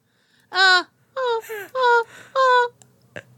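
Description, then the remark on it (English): A person voicing the character Reno imitates a dog's whimper, with four high, wavering whines in a row, each rising and falling in pitch, fairly loud, followed by a soft breathy sound. “Reno matches the whimpering.”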